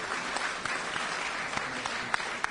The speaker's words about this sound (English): All right, and to my right we have John Sanders. Let's give John Sanders a round of applause for coming down here.